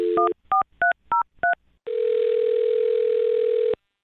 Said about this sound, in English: Well, I'm going to dial her phone number right now and see if we can get her on the phone, okay? Okay. All right, here we go.